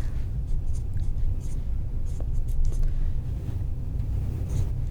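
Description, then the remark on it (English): A pen scratches across a piece of paper in short, irregular strokes, writing down a word, over a steady low rumble of background noise with no talking. “you got to write it down on your piece of paper”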